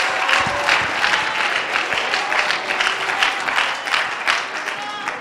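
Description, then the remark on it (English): A large crowd applauds steadily, a dense wash of many hands clapping at once, loud and sustained with slight swells, some voices mixed faintly into the roar. “Clap your hands.”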